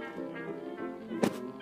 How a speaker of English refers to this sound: Well, let's get this cannon over here. Yeah, pop it down here.